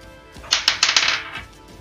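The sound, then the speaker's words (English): Polyhedral dice, one of them a d12, clatter across a tabletop during a roll for an investigation check: a quick burst of sharp, bright clicks and rattles that tumble for about a second before settling into silence, with no voices. “Ah, oh, shit, that was a d12.”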